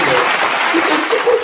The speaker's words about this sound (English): And you know, I need to clap for your family.